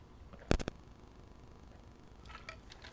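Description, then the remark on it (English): A few sharp clicks of a cup or bottle being handled, followed by a quiet pause and faint wet sipping sounds of someone taking a sip of water, with no talking. “But I'm going to take a sip of water, take a little bit of break, and let y'all ponder for a second.”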